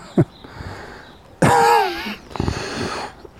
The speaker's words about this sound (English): Oh dear. See, I said smoking. As a non-smoker, it's made me cough.